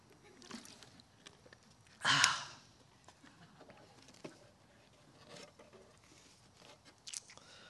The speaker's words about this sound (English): I'm going to take a sip of water because my mouth is parched.